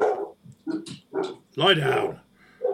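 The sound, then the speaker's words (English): A dog barks several times in short, irregular bursts, followed by a longer, drawn-out bark or yowl before falling quiet. “Well, it's not me. I am not a dog.”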